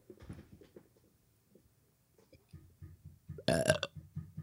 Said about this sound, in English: Did you get that burp?